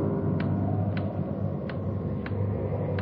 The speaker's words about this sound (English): Loud clock, ain't it?